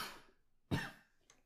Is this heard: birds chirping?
no